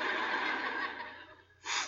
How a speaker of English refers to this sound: Well, now, don't cry. I'm not crying. I got the sniffles.